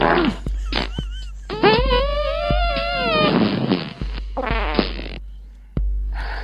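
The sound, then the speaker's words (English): A rapid series of comedic fart sounds dubbed onto a video to match different movements, each with a different pitch and length, some short and buzzy, others drawn out and wobbling upward like a squeaky whine, loud, with no talking. “And there's so many movements in the video, and these guys got different farts to match up with different movements.”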